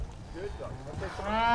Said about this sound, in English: trying to push the cows out the open area into their fresh grass for eating this morning.